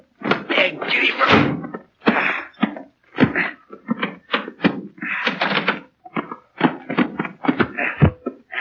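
door being opened

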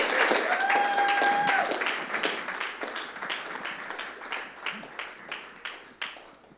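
audience applause

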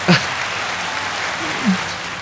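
applause sound effect

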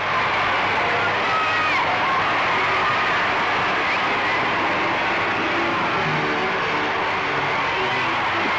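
street crowd cheering

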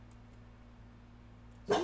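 dog whining and barking

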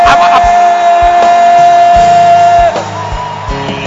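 audience shouting and cheering

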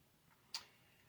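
wall clock ticking

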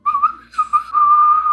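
person whistling

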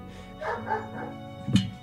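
dogs barking

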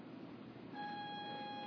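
buzzer sounding

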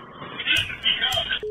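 phone line tone

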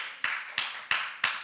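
small audience clapping

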